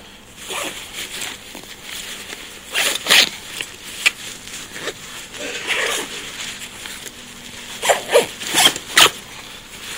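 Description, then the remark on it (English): A backpack zipper is pulled closed after packing gear, in several quick, raspy strokes, with short pauses and faint rustling between pulls and a burst of rapid zips near the end. “So once I get kind of the big stuff in, that's kind of when I'll zip it up.”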